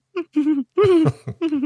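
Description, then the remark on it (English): A voice does an impression of a film character's nervous, throat-clearing giggle: four short voiced bursts in quick succession, low and gravelly with a hooting quality, the third longest and loudest. “They almost sound like he's clearing his throat more than he's giggling.”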